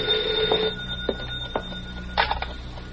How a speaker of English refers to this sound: Don't touch that phone. Hey, you. Me? Yeah, answer it. And don't talk funny.